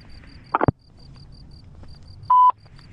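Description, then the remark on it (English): Phone dialing tones as someone calls another person's phone: a quick burst of button beeps, then a single steady electronic tone a couple of seconds later, over a faint, rapid high-pitched pulsing. “Can you please pick up your phone?”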